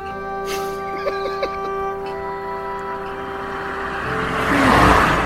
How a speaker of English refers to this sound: That was great. Quite a long car, you know.